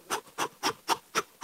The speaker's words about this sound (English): Well, I think you're smelling the dust that's all over the ox. Here, let me prove it to you. Here, let me take this brush over here, clean up the ox a little bit.